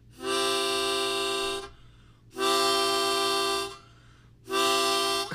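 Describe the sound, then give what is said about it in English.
A harmonica mimics a train horn with three long, steady, reedy blasts separated by short pauses, loud, with no one talking. “You can make it sound like a train blowing its horn, too.”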